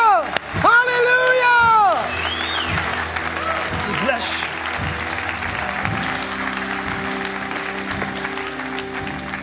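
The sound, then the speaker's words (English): An audience at a church service claps to thank God for his mercy, a steady, dense and loud wash of many hands with a faint rhythmic pulse, while a voice shouts out over the clapping near the start. “Come on, put your hands together.”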